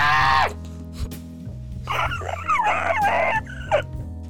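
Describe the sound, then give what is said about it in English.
A person imitates a screech owl's night call with a few harsh, wavering shrieks and strained cries, over a faint low background hum. “There's, like, a few different owls in our region that make the most horrifying sounds in the middle of the night when I'm camping a lot.”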